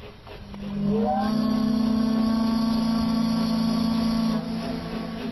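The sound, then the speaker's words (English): A steamer docking sound effect marking the steamer Columbia reaching the end of a voyage around the Pacific Northwest: one long, steady, low whistle blast with a rich buzzing tone, held for about three and a half seconds over a faint rumble, with no voices. “That sound means the steamer Columbia has reached the end of another thrilling voyage around the Pacific Northwest.”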